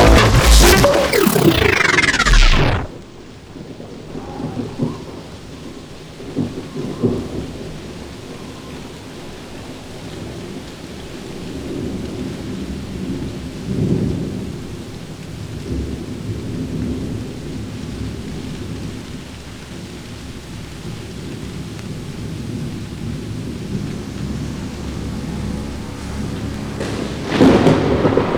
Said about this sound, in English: It's late at night, everything is quiet, the phones are off here in the 7 office, and outside there's a serious gale blowing.